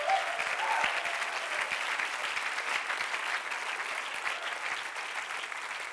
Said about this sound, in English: One more time, if you are pumped up and excited, just clap your hands with everything you got.